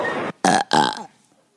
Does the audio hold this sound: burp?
yes